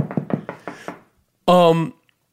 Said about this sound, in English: Fortunately, and I knock on wood, I am knocking on that good oak.